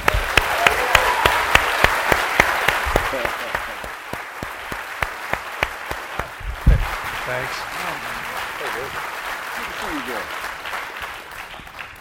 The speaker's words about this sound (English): And try to keep your applause to under an hour for this man.